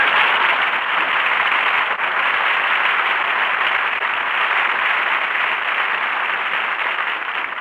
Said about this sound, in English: So here he is, folks. A man the whole world is anxious to hear, but on the other hand... Never mind. Jack Benny, applause.